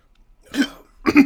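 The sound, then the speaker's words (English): Two sharp, voiced heat hiccups, about half a second apart, the second slightly louder, with quiet pauses around them and no talking. “Oh, you got the hiccups now.”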